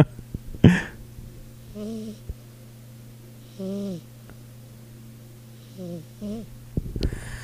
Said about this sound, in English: Ladies and gentlemen, the world's cutest snores.